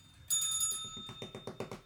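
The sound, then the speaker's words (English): A bright, quick bell ring sounds alone, followed by a rapid series of softer clattering pulses as it fades out within about two seconds. “I need a longer bell for the rippers.”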